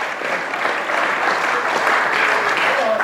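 A crowd applauds steadily, a dense wash of many hands clapping at once that holds its level throughout, with a faint murmur of voices mixed in.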